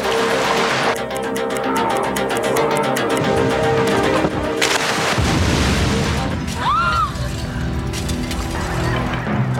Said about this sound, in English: Oh no, the bomb.